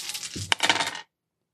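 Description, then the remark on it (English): A rapid rattle of strength attribute dice rolled in a game, tumbling and clattering on a hard surface, with a sharp knock midway, lasting about a second before falling silent. No one speaks. “So yeah, your skills will not, if you roll any ones on your attribute die, dice, that will be bad.”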